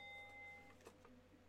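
A bell struck once, its bright, high metallic tones ringing out faintly and fading within about half a second, followed by a couple of soft knocks. No one speaks.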